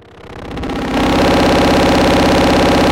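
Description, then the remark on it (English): A bass-range note from a Teratos synth voice, modulated by a Rampage with width and fold all the way up, driven through a Tube Screamer distortion pedal, swells in over the first second, then holds as a loud, steady, buzzy growl rich in gritty overtones, with no talking. “So let's hear how this sounds with the Tube Screamer on it. So this is with the Tube Screamer.”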